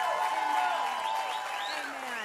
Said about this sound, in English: Can you hear everybody clapping? Amen. I can. Come on, y'all. Let's show some support here.